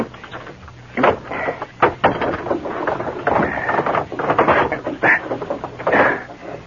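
The rusted window catch of a bank being forced open: a run of gritty metallic scraping and grinding, with sharp creaks and jolts in uneven bursts, fairly loud and without any voices.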